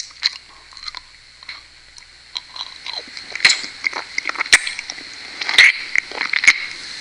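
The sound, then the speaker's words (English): Wet sucking and smacking mouth sounds, a steady run of irregular clicks and slurps that grow denser and louder toward the end, with no talking. “You like the sucking noise?”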